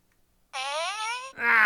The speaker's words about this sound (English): You got a fart. Oh, so close.